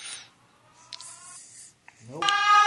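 A DJ air raid siren sample: after some quiet scraping and faint tones, a loud harmonic wail sweeps sharply upward and holds at a high, piercing pitch. No one speaks.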